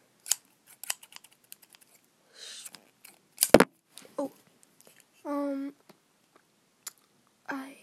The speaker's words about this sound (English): Yeah, so I'm just not gonna use hair cutting scissors. I'm gonna use, like, normal scissors.